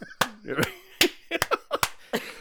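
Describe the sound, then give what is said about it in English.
Someone mimics a wind-up mechanical monkey toy clapping, like the little monkey from The Phantom of the Opera: about eight sharp, slapping hits in a loose, uneven rhythm, with brief voiced noises and a hint of laughter between them. “If you don't figure it out, freak folks, she's actually doing that little mechanical monkey sound, like clapping.”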